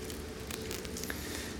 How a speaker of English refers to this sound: Let's also peel back the foil layer to get to the juice that's inside the cup.